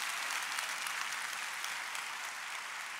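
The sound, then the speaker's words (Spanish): An audience breaks into steady, dense applause, many hands clapping together in a continuous wash of sound that holds at an even level for about three seconds, with no voices over it. “Date un aplauso.”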